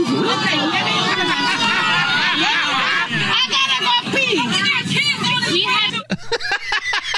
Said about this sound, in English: I love the audible gasp of the... I mean, you can hear the entire plane go, oh!